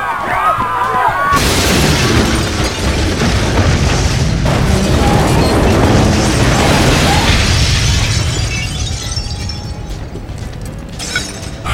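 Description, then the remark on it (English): A bomb explosion in a library erupts suddenly after a brief quieter moment: a loud, deep blast followed by several seconds of roaring rumble and crashing, shattering debris that slowly tapers off. “A bomb! Get everyone out of the library, now!”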